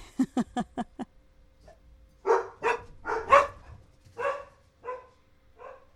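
Scared dogs bark: a rapid run of five sharp yaps, then a short pause and several louder, fuller barks spaced irregularly, each fading off.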